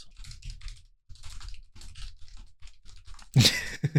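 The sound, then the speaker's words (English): Rapid keyboard typing, a steady flurry of clicks and taps, ending in a louder burst of clatter near the end. “You hear me typing?”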